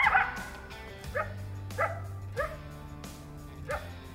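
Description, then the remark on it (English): A coyote gives a series of sharp, high yips and short barks, about five evenly spaced calls over a low steady hum, with no talking. “Besides the songbirds that nest here, and the insects they feed on, you could at any moment see both predator and prey animals, the latter of which is most common in the coyote.”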